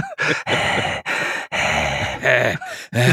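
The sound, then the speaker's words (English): A person makes exaggerated heavy breathing sounds, a rapid series of about six loud, raspy, groaning breaths with brief pauses between them and no talking. “I like to run around Egyptian mazes and heavy breathe behind people.”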